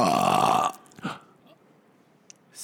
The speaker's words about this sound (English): Today's word is... burp. Excuse me, I burped.